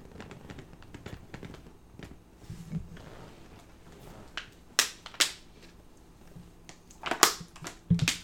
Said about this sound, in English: Make more noise with your fucking water bottle, douchebag. Sorry. It's not like we're doing a fucking podcast or anything.